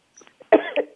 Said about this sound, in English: As I cough.